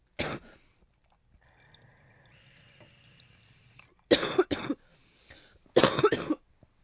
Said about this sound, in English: I always cough, so I think that's just me coughing.